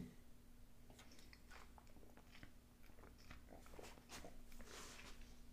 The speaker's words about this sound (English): Sorry guys, I was drinking some Gatorade. Give me one second. I'm gonna take another sip.